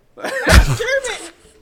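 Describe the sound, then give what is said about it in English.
A single loud sneeze bursts out, a sharp explosive puff trailing into a brief voiced tail, with no other sounds around it. “Gesundheit.”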